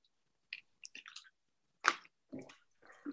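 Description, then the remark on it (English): Wet gulps and slurps of several people all taking a water break at the same time, a handful of short bursts scattered across a few seconds with quiet pauses between them, and no talking. “Everybody just took a collective water break at the same time.”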